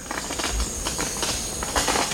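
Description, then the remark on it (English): A male Montezuma oropendola, about 20 inches tall, perched beside its nest at Mayan city ruins surrounded by dense forest, gives its popping song: a few sharp, crackling pops like small firecrackers, spaced irregularly over a steady hiss, with no voices. “He sings again, this time with a sound like the pop of firecrackers.”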